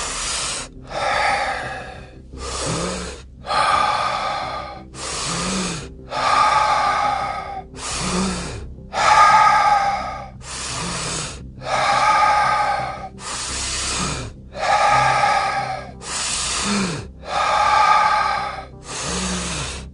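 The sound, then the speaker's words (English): Deep, forceful breaths repeat in a steady rhythm during round two of a breathing exercise: about fifteen loud inhale-exhale cycles, each breath rushing and airy, with no talking. “Now we continue breathing.”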